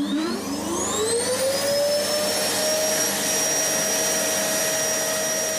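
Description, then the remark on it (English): A vacuum cleaner starts up, its motor whine rising in pitch over the first two seconds and then holding a steady, loud roaring drone with no talking. “Can you hear the vacuum cleaner going around, couldn't you?”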